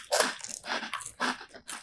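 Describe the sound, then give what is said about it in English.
Crisp crunching bites into a little bruschetta cracker topped with pâté, several sharp crackly bursts in an uneven rhythm over about two seconds, with brief pauses of chewing between them. “I'm doing it on a little bruschetta cracker.”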